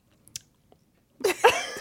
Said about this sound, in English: Guys, how did you chew this? I just ended up swallowing it.